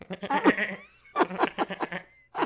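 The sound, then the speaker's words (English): A person's voice attempts a dolphin imitation that comes out as goat-like bleating: two wavering, quavering bursts, then the start of a third, with no talking alongside. “I can't do it very well. That sounds like a goat. It was a little goatish.”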